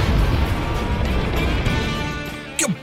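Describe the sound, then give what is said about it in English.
A cannon-like boom sound effect played live in the studio, a heavy low rumble loud from the start that gradually fades over a few seconds, ending with a short descending whistle. “It's good to have Hedge in studio for the live boom because usually there's some sort of delay, some lag in the boom when we have him remote.”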